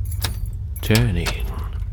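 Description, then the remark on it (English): Keys jingle and rattle in short metallic bursts, followed by a brief scrape and click as a key slides into a lock, with a low steady rumble underneath. “A relief that soon melted upon the sound of a key being produced and entering the lock.”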